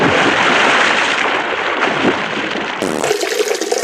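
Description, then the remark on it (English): A dolphin urinating: a steady, loud hissing spray of water squirts for almost three seconds, then abruptly gives way to a brighter, choppier splashing of water. No one speaks. “But if you listen, it takes air and then it squirts. Let's hear it. And then splash.”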